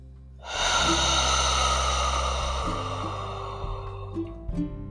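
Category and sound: human body sound, breathing in through nose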